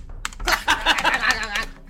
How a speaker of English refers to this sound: Okay. Look. I'm going to Google moon door, and now you're going to have to hear my keyboard.